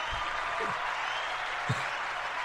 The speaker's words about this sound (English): Oops, that was totally the wrong button. Just applause. Applause for marijuana.